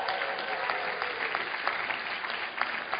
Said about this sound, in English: And the Tanzania team is back. Let's give them a big hand.